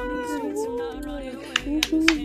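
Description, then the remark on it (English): Voices imitate a cheering crowd with drawn-out, wavering whoops, and a few sharp claps break in near the end. “Yeah, and the crowd goes wild.”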